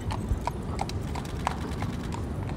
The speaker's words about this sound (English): There goes the horses.